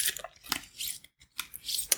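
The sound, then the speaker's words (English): A deck of Chakra Insight Oracle cards being shuffled for an oracle card reading: quiet, crisp papery flutters and slaps in several bursts, with a short pause midway before the shuffling resumes. “As I shuffle the cards, set an intention.”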